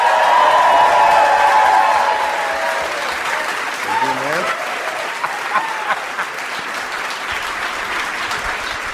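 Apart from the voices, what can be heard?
audience applause and cheering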